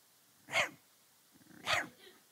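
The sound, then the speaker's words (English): A person mimics a little black toy poodle barking at another dog: two loud, gruff barks about a second apart, the second preceded by a low rumbling growl, with no other talking. “And just, I mean, she'll see another dog and she's like.”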